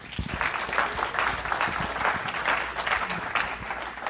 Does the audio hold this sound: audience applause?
yes